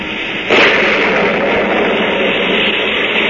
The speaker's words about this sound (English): It's the story of a simple melody and of a killer who, as our story opens, is fighting desperately and alone against a raging storm off the coast of Maine. The lifeboat he is in is half foundered, and the man's wild rowing does little good.